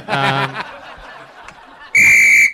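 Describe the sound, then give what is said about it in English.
A short burst of laughter gives way to quiet, then a single loud, shrill referee whistle blast cuts in near the end and holds for about half a second. “there's the whistle on the play. There's a penalty on the field.”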